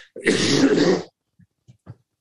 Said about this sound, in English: Excuse me, I'm suppressing a cough here.